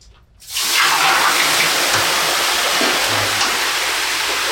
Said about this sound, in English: Nothing better, man. Yeah. One of the peak experiences of life, sitting in the sauna and pouring hot water or water on hot rocks.